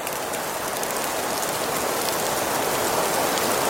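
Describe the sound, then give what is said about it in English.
A steady, dense hiss of snowfall and sleet in Connecticut that sounds much like rain pattering on a surface, constant and fairly loud throughout with no voices. “And today we have, Snowfall in Connecticut.”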